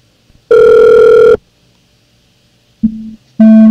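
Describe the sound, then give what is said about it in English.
Loud electronic telephone tones with no voices: one long buzzy ring, a pause, then a short lower beep followed by another ring starting, like a phone call ringing through. “Let me get that other phone call that I missed.”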